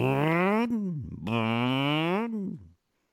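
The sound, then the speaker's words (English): A man's voice imitates a car engine, as in Porsche's engine noise option for one of its new models, with two long, rising-and-falling revving drones, rich in buzzy harmonics, sounding like a 1956 Ford, with a brief sputtering break between them before it fades out. “Porsche is offering an engine noise option for one of its new models. It's a guy going like this.”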